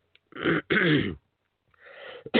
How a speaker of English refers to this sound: Excuse me, folks. I don't mean to be coughing on the air because that's bad policy for me.